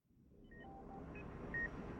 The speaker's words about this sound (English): And the next thing was a beep, beep, beep, beep.